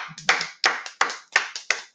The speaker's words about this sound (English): So we got to give him a round of applause.